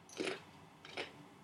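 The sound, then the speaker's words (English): Two crisp, crackling crunches of someone biting into raw carrot, about three-quarters of a second apart, as a test of whether the microphone picks up the crunching. They are fairly quiet, with no talking. “I'm not going to say anything, and you watch this little bar as you're crunching your fucking carrots.”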